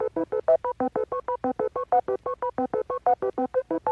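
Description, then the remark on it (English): A rapid, steady run of short electronic beep-boop tones, about two dozen, hopping between higher and lower pitches like a playful synth melody, fairly loud with no talking. “Some beep boops.”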